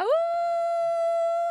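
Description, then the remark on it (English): A single long wolf howl swoops up quickly and then holds one steady, clear pitch, loud, with no other sounds or talking around it. “I feel like I could survive a wolf outside of my door. He's there always.”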